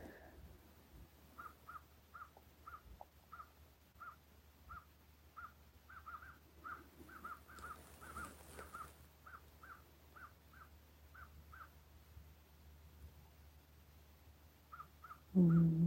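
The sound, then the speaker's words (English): Crows harassing an eagle caw over and over in a steady series of short calls, against a low outdoor rumble, and a loud bump lands right at the end. “Eagle being eagle, crow being crow.”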